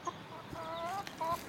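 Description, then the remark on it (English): Chickens cluck softly in short, scattered bursts, a few quick calls rising and falling against a faint outdoor background. “I do come out and look at my chickens again and again, but that's not the place.”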